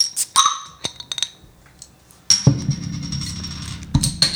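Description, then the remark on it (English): A 500 ml bottle of wheat beer being opened: a few sharp glassy clinks and taps, then a sudden hissing, fizzy rush that carries on for over a second before a final clink. “Let's open her up.”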